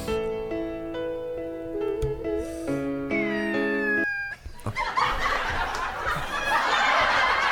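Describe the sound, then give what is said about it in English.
A voice holds a few stepped, nasal tones, then a thin whistle that slides downward, followed by a loud breathy hiss, imitating a bottle rocket. No words are spoken. “Why did you sound like a bottle rocket?”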